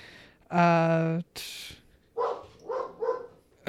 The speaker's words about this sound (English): Our dog has seen another critter outside.